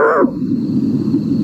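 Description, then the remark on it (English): An owl growls in a low, rough, continuous rumble lasting about a second and a half, beginning with a brief harsher, higher-edged burst before settling into a steady guttural drone. “They can also growl.”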